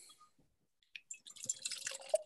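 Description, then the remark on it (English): Beer is poured into a glass: a brief quiet splash, then a steady fizzy, gurgling stream that builds over the last second or so, with no one talking. “But I shall reserve judgment until I've got it in the glass, I think. Yeah, let's pour.”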